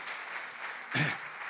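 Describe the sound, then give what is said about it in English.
A church audience at Spirit Life claps steadily in dense, continuous applause, giving the Lord a hand clap after a morning sermon, with a brief louder swell near the end. “Let's give the Lord a hand clap for this message this morning that he's laid upon my heart.”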